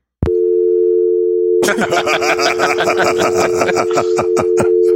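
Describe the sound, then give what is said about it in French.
A steady telephone dial tone from a home telephone line, heard through a studio phone interface, hums alone, then after a second and a half a burst of rapid digital tones and clicks layers over it, continuing to the end. “ça indique que j'ai une interface pour qui interface avec la ligne de téléphone maison pour qu'on puisse prendre des appels puis faire des appels”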